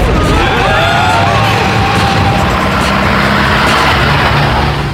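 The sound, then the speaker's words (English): A taxi cab's engine roars loudly and continuously, revving hard as it accelerates and takes a left turn, with dense road noise and a rising, sweeping pitch, and no talking. “Never you mind, take a left here, cabby. No entry, mate. Commit a traffic offence or get blown up.”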